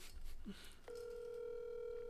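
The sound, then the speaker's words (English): After a moment of faint rustling, a steady electronic telephone ringback tone starts abruptly and holds at an even, moderate level until the end, as if heard through a phone line. “So he better answer this fucking phone.”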